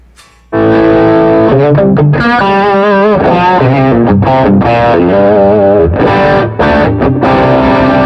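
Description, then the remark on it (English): A loud, heavily compressed electric guitar with a lot of gain from compressed overdrive rather than distortion plays sustained notes and chords, starting abruptly after a brief quiet moment and holding a dense, even level throughout with no talking. “So I definitely have like a lot of gain going on, but it's not distortion. It's just like compressed overdrives, I think.”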